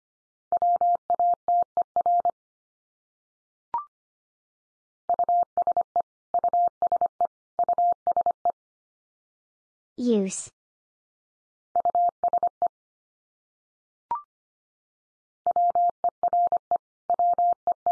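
Morse code at 25 words per minute sending common words: a single steady mid-pitched tone keyed in quick short and long beeps, grouped into bursts with pauses between, plus a few soft clicks and one brief warbling sweep midway.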